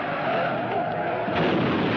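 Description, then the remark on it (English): A car loses control and skids roughly up an embankment over loose ground, a dense, grinding roar of tires and engine that stays loud throughout, with scattered crunching bursts like gravel being churned. “I feel like Dark's losing control of car. It's skidding up the embankment.”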